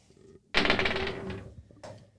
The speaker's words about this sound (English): Now, take these two dice here. Shake them up and throw them on the table. Let's see what you get.